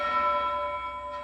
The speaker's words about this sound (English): A single note from a bell kind of loft above the forest. Does she react at all? No, not that you can tell. You said it just kind of lofts above the forest? Yeah, it almost rises like heat would. Okay. Like it has this weird quality to it.